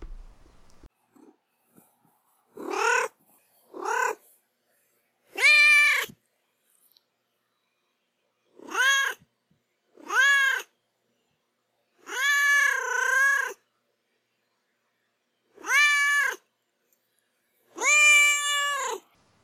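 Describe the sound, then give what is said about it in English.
A domestic cat named Duarte meows repeatedly, about eight loud calls in an irregular series, some short and some drawn out, with quiet pauses between them and no one talking. “Well, my cat Duarte will share his opinions on the Greek tycoon's blackmailed mistress.”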